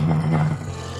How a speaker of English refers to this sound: You hear Bandit from behind you with a low growl.